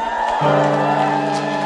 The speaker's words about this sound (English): A mighty hand clap.